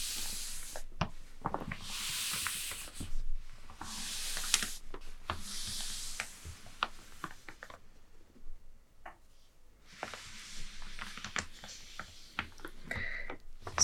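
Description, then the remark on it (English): A paper map being folded up crinkles and rustles in several bursts of bright, crackling noise, with brief taps and clicks between them, a quiet pause midway, then more rustling as the folding finishes. “So let's fold this up to make some space.”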